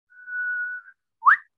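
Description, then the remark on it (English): A person whistles an imitation of the call of the Australian whipbird: a long, steady high note followed by a brief pause and a sharp, rising whip-crack snap, loud and clear with no talking. “But I don't know if you know this Australian, there's an Australian bird called the whip bird.”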